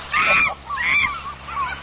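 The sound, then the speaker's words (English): Three loud, raucous animal calls ring out in quick succession, each a harsh, honking squawk, over a steady wash of dense jungle background noise. No one speaks. “You know, call back later when the jungle's not so noisy.”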